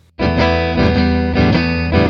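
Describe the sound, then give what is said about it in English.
A loud, distorted electric guitar plays a chordal riff without good muting technique. The unmuted strings ring together into a thick, messy wash of sustained notes, with no one speaking. “So the question was about ringing strings ringing out.”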